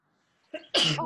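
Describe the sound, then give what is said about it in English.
A single loud sneeze: a brief sharp intake of breath followed by an explosive burst that trails into a voiced, airy release. “Bless you.”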